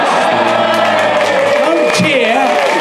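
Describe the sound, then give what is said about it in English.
The audience of the show AO Ultimate cheers and whoops loudly and steadily for about three seconds, a dense wash of many voices with higher shouts rising and falling over the roar. “Don't cheer.”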